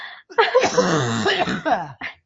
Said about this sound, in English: You okay. Yeah, I laughed so hard I started coughing.